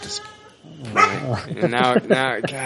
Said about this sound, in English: Now I got a dog barking.